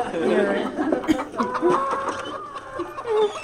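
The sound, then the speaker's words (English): A flock of free-range chickens on a dance floor clucks and squawks in a busy, overlapping chorus, steady throughout, with a few sharper calls rising above the rest. “Oh, what's on my dance floor? Well, it's, you know, some free-range chickens”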